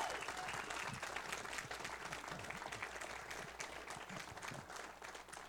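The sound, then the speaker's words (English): A church audience breaks into sustained, dense applause for the group on the platform, many hands clapping at once in a steady roar that stays loud throughout with slight fluctuations, no clear rhythm. “And I think that this group on the platform here, you need to give them a great round of applause and let them know how much you appreciate it.”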